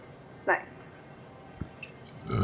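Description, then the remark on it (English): A single short, throaty burp pops up, followed by a couple of faint clicks and a low rumble of movement near the end. “you're getting meat burps.”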